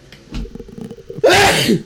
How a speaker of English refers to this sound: I'm going to sneeze. I can feel it.